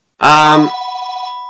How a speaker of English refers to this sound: Who the hell would call my house on a regular phone? What is wrong with these people?